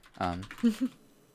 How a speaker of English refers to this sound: Sorry for the keyboard noises. We are maintaining a document because we are so organized.